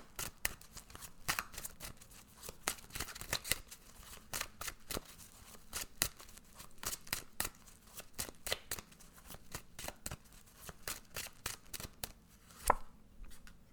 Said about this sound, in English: Okay, let's go ahead and pull some cards for the week. Let's see what you need to know.